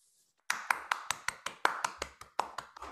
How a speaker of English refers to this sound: I appreciate the claps from the audience that's here.